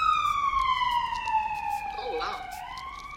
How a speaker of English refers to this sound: Ambulance.